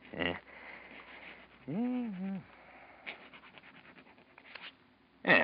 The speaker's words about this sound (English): Here, now, use my pen. Hmm? Go on, now. Write your name on this piece of paper.